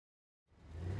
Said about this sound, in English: heard the sputtering of an engine and saw a car stop in front of House 28. His person had once shown him photographs of antique cars, and this seemed to be one.